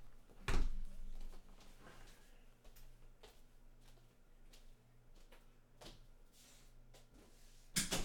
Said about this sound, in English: Damn, I went and closed the fucking door.